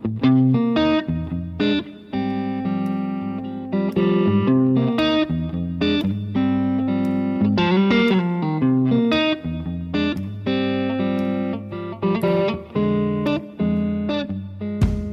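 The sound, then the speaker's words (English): Distorted electric guitar plays a continuous riff with sustained, chorus-tinged chords and quick picked notes, loud, with no voices over it, as guitarists in a recording studio warm up their fingers and find their tones before noon. “And that's what we're kind of warming up our fingers on. Finding our tones, getting shit happening.”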